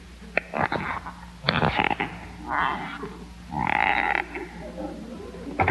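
Squeaky shoes creak with each slow, careful step as someone tiptoes past Mr. Conklin's office, about four or five drawn-out squeaks spaced evenly, fairly loud, with no talking.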